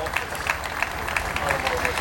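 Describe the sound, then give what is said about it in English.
A broad round of spontaneous crowd applause as a state hearse comes into view, a steady wash of many hands clapping at once, with brighter bursts of claps standing out at a loose, irregular rhythm. “And there's a much broader round of applause now coming in.”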